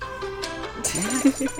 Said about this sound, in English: Did you not hear my phone make a noise?